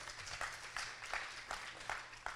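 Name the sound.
audience applause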